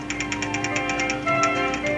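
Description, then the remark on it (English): A typewriter clacks away on its own, typing out what a person is saying, in a rapid, even stream of crisp keystrokes, about ten per second, over a steady tonal hum, with no one speaking. “Did you see that? The machine typed everything I...”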